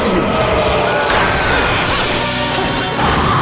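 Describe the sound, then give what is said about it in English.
A loud crashing and splintering as a door is smashed in a video game, a dense burst of impacts and debris that lasts for several seconds with a few sharper hits. “Okay, we smashed that door.”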